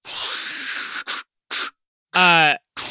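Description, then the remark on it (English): A voice imitates a robot spraying: a long breathy hiss, two short sprays, then a buzzy rising pitched burst with harmonics, and a final hiss, separated by brief silences. “Can I make the robot noises? Yes, please.”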